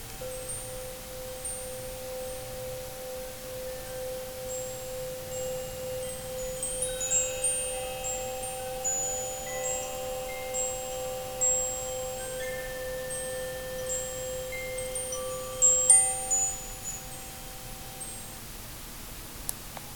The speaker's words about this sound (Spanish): Como una manera de anclarnos a este momento presente, vamos a usar el sonido de esta campana.